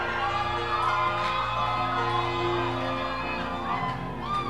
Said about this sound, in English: Now somebody raise your right hand, your left hand, and give the Lord a shout of praise, a clap offering, a jump.